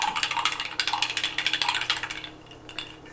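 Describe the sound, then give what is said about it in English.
Ice clinks and rattles against glass in a quick, steady run of bright clicks that fades toward the end, with no voices. “This is also the first podcast we've recorded where there's ice clinking in our glasses.”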